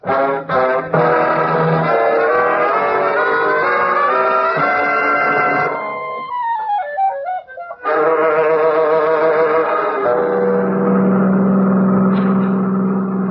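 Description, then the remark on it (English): A car engine revs loudly and accelerates as the car drives away down a drive, its pitch climbing and dropping through gear changes before surging again. No one speaks. “A car just went down the other drive.”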